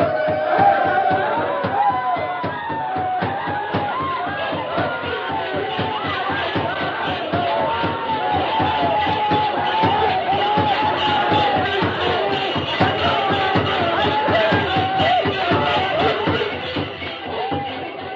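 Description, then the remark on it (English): A large crowd of braves dancing at night shouts and whoops continuously in a frenzied, chanting clamor, working themselves into a frenzy, with dense rhythmic thumping of stamping feet running steadily beneath the voices throughout. “And while they danced and shouted, working themselves into a frenzy, he slipped away unnoticed and joined the masked man.”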